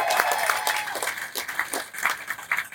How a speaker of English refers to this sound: what a great round of applause for having us here.